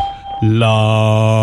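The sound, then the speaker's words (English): After a brief quiet moment, a loud, steady electronic beep sounds and holds without wavering for about a second: the prompt tone of the Skype call testing service, signalling to record a message for playback. “After the beep, please record a message.”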